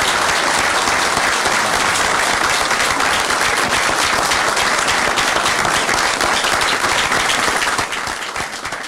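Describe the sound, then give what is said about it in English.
Sustained, dense applause from a crowd at the Georgia state capitol after the governor announces Kelly Loeffler as the next U.S. Senator, steady and loud throughout with a slight tapering near the end. No voices stand out over the clapping. “Turn it down for the applause.”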